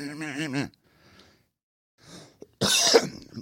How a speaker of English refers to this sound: Ooh, I got excited. Had to cough.